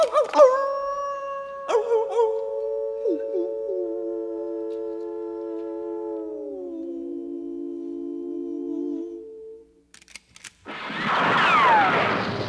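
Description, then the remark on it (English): A coyote opening the Writers Radio Theater show lets out one long, wavering howl that slowly slides down in pitch before fading. A couple of sharp cracks follow, then a loud burst of rushing noise. “No animal will be abused or poked with a sharp stick, unless you count the coyote who opens the show.”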